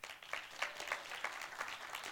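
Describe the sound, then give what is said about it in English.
A crowd applauding on request for about two seconds for a post-production team, a dense wash of many hands with a loose, regular pulse of louder claps roughly three times a second, moderately quiet overall, with no voices. “And in order for the post-production team to be happy with me, can you do me a favor? Just clap real quick.”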